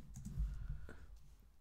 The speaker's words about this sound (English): I'm just typing in Tiger.